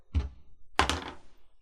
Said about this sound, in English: Roll a d20 for me.